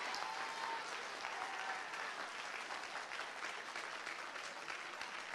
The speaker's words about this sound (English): Now those who are clapping, clap like you mean it.